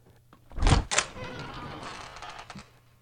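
The thick, unwieldy outer door of a large fruit cellar in a basement gives a couple of loud thunks, then drags open with a long grinding scrape that fades after about two seconds. No voices.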